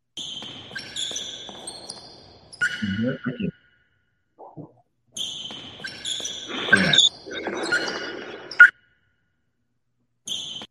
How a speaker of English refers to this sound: Play it again. That's squeak. Those shoes are squeaking. It's at a basketball court, though.